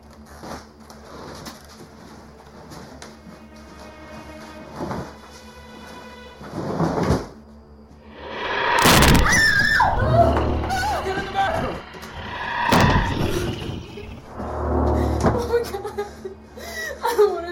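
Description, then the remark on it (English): A heavy dresser scrapes and bumps across the floor in loud, grinding bursts with sharp knocks as it is moved in front of a door, after a quieter stretch of faint indoor noise and voices. “Help me move this dresser in front of the door.”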